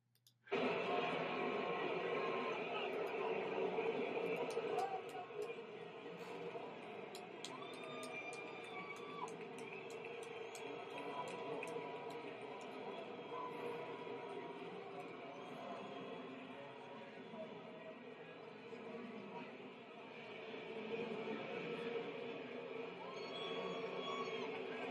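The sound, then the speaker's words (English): A stadium crowd in Illinois boos loudly and steadily as Lightfoot and Pritzker come out onto the field, a dense, sustained roar of many voices, with one girl cheering, that starts abruptly and holds for about twenty-five seconds with only slight swells. “You hear the whole crowd that's there boo, except for one girl who cheers.”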